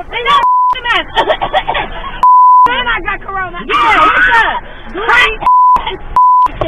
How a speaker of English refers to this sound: We have the clip, and I just wanted to warn you. We have beeps, and we took out the profanity, but it's intense.